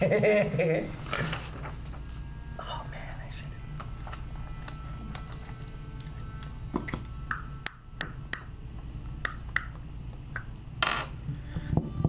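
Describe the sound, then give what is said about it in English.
A series of sharp tongue clicks, like coaxing a horse, comes in quick irregular bursts over a low background murmur, distinct, with a few louder pops near the end. “Making those noises. Do you have a tongue?”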